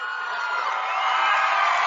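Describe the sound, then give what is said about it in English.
A large basketball crowd roars in a loud, sustained cheer as a player comes into the game with 46.4 seconds to go, a dense wash of voices that holds steady and slightly swells over a couple of seconds, with no one speaking over it. “a loud cheer for Brandon Bruning, who's going to come in with 46.4 to go”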